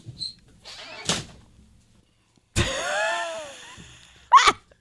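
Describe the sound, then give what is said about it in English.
A door opens with a drawn-out scraping squeal as a woman comes in, framed by sharp clunks of something being dropped, then a final bang; the door is left open and no one speaks. “She just comes in, drops it, leaves the door open.”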